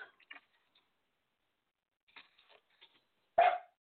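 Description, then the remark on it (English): Prescott the dog lets out one sharp, loud bark near the end, saying hello. A few faint, scattered yips and clicks come before it, and it is otherwise quiet. “The dog Prescott just says, I don't know if y'all hear him, but you probably do, and he just said hello.”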